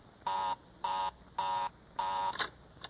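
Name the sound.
telephone line busy signal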